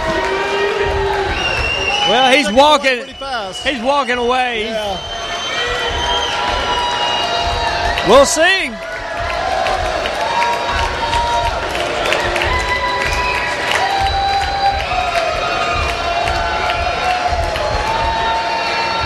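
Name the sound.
festival crowd cheering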